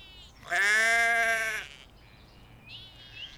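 A single loud, drawn-out bleat lasting about a second from sheep grazing on a hilltop plateau, followed by quieter outdoor background with faint high chirps.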